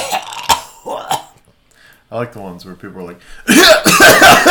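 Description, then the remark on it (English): A person speaks briefly, then lets out a loud, harsh, raspy vocal burst imitating a smoker's hacking cough, preceded by a couple of short sharp coughs at the start. “You know, my add the smoker's cough, the...”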